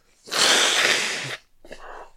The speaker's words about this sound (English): Sorry, I got a little bit of a blah in my mouth. I'm going to blow my nose. Excuse me.